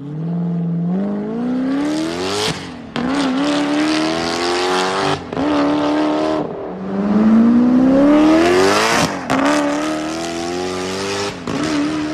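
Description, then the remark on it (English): A Koenigsegg CCX supercar with a titanium exhaust revs hard and loud, its engine note climbing and dropping in repeated sharp sweeps with brief gaps between bursts, without any talking. “they must have done a titanium exhaust on it. So I'll insert a clip of that right here.”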